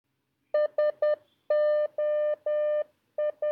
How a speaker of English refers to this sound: It's a signal for help. 3 dots, 3 dashes and 3 dots. So in Morse code, there are blanks and there are dots. A short flash for dot and a long flash for line.